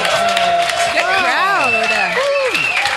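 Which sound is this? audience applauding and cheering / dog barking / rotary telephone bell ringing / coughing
audience applauding and cheering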